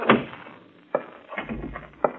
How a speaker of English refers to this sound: How do you lock this door? There's a thing underneath the doorknob there. You slide it over.